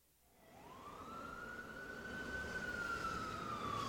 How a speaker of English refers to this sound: When a fire engine passes and its siren makes a loud noise, that could be scary.